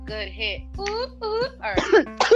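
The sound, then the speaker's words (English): Someone coughs roughly five times in quick succession, each cough harsh and throaty, growing a little louder toward the end, with a steady low hum underneath. “I was coughing earlier.”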